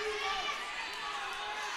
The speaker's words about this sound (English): And I think a Yale fan just screamed, "The ball don't lie."